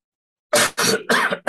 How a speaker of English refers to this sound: I'm going to cough. Excuse me.